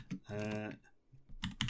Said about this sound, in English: Here's my clacky keyboard. Wait for it. Clacking away there.